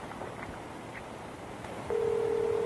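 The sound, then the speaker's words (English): A steady telephone dial tone switches on partway through after a stretch of low background hiss, holding loud and unbroken until the end, with no one speaking. “All right, well, I'll call the phone company and take care of it.”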